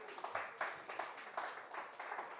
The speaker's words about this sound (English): You can tell that's all the youth from camp clapping, right?